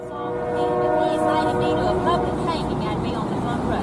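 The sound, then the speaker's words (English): A train rumbles loudly past in Mississippi, a steady heavy roar with a sustained horn-like tone riding over it, while a woman's muffled voice talks underneath, barely audible. “Okay, so that train is making it a little hard to hear what she's saying.”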